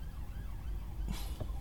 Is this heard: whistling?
no